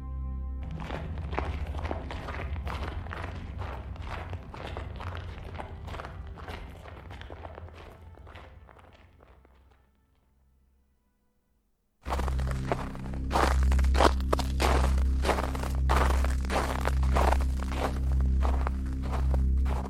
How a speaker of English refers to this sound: His footfalls crunched snow beneath them. The frozen ground swaddled in a diamond-dusted blanket of white, cracked small echoes into a fresh-born sky.